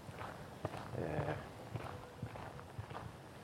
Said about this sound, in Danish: Hvad gør det ved tænkningen at gå her? En grussti, underlaget er ok.